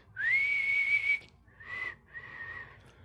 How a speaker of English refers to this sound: Can either of us whistle well?